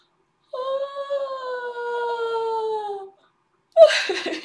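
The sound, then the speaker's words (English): A loud, drawn-out yawn: one voiced, whining tone lasting about two and a half seconds that slowly sinks in pitch, then stops, followed after a short pause by a brief breathy burst. “Sorry for that weird yawn, loud yawn.”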